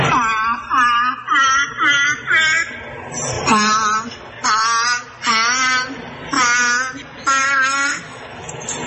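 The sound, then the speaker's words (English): A seal sings Twinkle Twinkle Little Star as a string of loud, wavering, moaning notes, about nine separate phrases with short pauses between them, rising and falling in pitch. “Well, wait, now here's the seal singing Twinkle, Twinkle, Little Star.”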